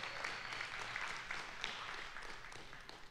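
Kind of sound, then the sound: crowd, audience clapping hands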